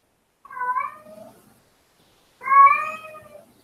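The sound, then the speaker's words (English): A cat meows twice, a shorter call followed after a pause by a longer, louder, drawn-out one, with nothing else in the background. “My poor kitty.”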